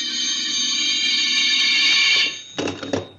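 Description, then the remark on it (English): A telephone rings loudly with a shrill, steady electronic tone held for about two seconds, then, after a brief gap, starts a second, shorter ring. No one speaks. “I could answer the phone and know it wasn't she.”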